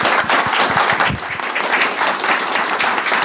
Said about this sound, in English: Can we give a huge round of applause? Thank you very much.